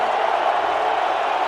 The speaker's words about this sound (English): 12:01, 12 minutes to play in the opening quarter, and Arizona lining up on a 4th and less than a yard right now with the offense. Here comes the BYU crowd.